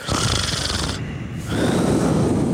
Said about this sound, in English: with your breathing ass on the mic.